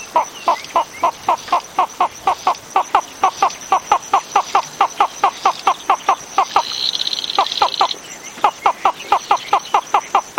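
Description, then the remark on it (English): A flufftail from Madagascar calls alone in a long, steady run of quick, clipped notes, broken briefly by a higher buzzing trill before the rhythmic series resumes, fairly loud. “Both flufftail calls are on the British Library CD, …, an audio guide to the island's unique birds.”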